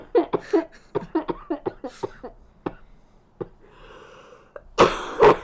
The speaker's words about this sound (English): That's your fault. How is it my fault? Because you made me laugh as I was about to cough.